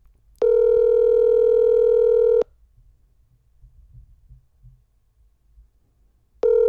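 telephone ringback tone

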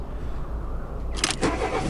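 car engine cranking

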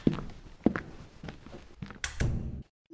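footsteps

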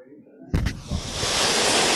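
ocean waves

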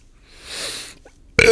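burp

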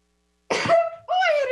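a sneeze

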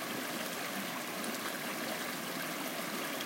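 flowing stream water

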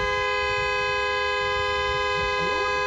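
car horn honking

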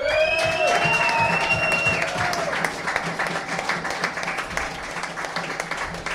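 audience applause and cheering

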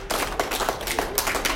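hands clapping

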